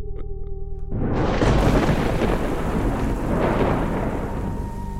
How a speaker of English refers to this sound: The storm broke a few minutes after we left that service station. We drove through the sheets of rain.